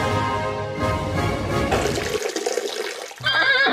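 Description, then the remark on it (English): A steady trickle of liquid pours into a metal cup, with a bright, tinny ringing that rises in pitch as it fills, briefly thinning before a louder splash of pouring. “The armadillo is in fact pissing into the Queen's Royal Cup, which gives it that nice sort of tinny echo.”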